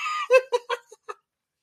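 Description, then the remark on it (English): Someone imitates a rooster crowing: a drawn-out, strained opening note followed by four or five quick, clipped bursts that trail off, with no other sound around it. “It's the cock-a-doodle-doo, right? You know, it's the rooster crow.”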